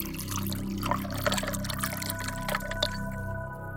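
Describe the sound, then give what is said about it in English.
Ice water pours steadily into a glass in a kitchen, with a splashy, trickling stream and a faint ringing tone that shifts as it fills, then tapers off near the end. Moderately loud, no voices. “It's around 2 a.m., and Gary Nelson was up and in his bedroom after just getting a glass of ice water out of the kitchen.”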